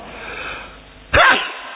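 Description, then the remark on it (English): A single sharp, loud, sudden sneeze bursts out after a brief quiet breathy lead-in, with a short trailing exhale. “Excuse me. Bless you too.”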